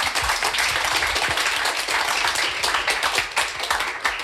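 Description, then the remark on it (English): A crowd breaks into sustained applause for a panel, many hands clapping densely and steadily for several seconds, with no voices standing out. “And I think a round of applause at that stage to our panel.”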